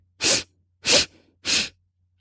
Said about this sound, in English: Let's do it again. Ready? 3 quick sniffs. And a long exhale.